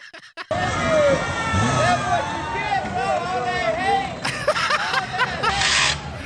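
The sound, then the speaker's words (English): A dense crowd roars continuously, with excited voices rising and falling in rolling whoops and shouts, loud, swelling into brighter cheering near the end. “You can hear people in the crowd. Woo!”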